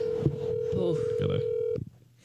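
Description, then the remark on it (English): Telephone keypad tones beep as someone dials a phone call, over a steady electronic hum for under two seconds, with voices murmuring underneath, then cut off abruptly into near silence. “I just got to make one quick phone call.”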